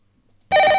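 A quiet pause breaks into a loud, sustained electronic quiz game buzzer tone, harsh and steady with bright harmonic bands, holding at full volume without any talking.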